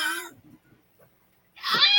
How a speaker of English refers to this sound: Hold, I think my cat's having a hairball. Give me 1 second.